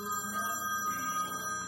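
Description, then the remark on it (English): A telephone rings at Rick's Martini Bar with a steady electronic tone, a stack of bright, sustained pitches holding level for the whole moment without a break. No one speaks over it. “And we get the phone. You get that.”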